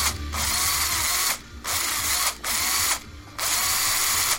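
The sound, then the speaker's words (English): A power drill whirs loudly, running in four steady bursts separated by brief pauses as it bores a hole through the center of a baked potato. “Then you're going to take a drill, and you're going to drill a hole through the center.”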